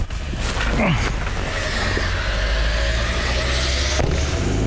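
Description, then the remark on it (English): The engine of an SUV that hit a tree revs hard with the driver's foot on the gas and exhaust filling the air, its pitch surging and dipping over a steady, loud roar, with indistinct voices buried in the noise. “The driver has their foot on the gas and exhaust is filling the air.”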